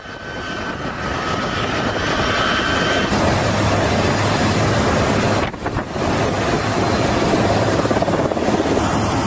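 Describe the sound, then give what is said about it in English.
A loud, continuous roar of helicopter rotors and the turboprop engines of a C-130 transport plane arriving in Turkey with international aid after the earthquakes, with wind buffeting the microphone and a brief dip partway through. No one speaks. “Helicopters and a C-130 arriving in Turkey after the devastating earthquakes that rocked parts of Turkey, Syria, and, of course, Lebanon.”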